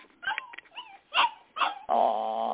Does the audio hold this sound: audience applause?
no